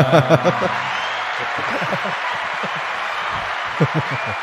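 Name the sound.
applause sound effect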